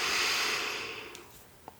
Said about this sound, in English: And I'd like to invite you to begin breathing in through your nose. So let's take a slow breath in.